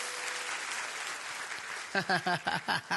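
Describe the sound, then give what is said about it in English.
A crowd claps their hands after a closing prayer ending in Jesus' name, in a dense, steady wash of applause lasting a couple of seconds, then a voice starts speaking as the clapping fades beneath it. “You can clap your hands and be seated.”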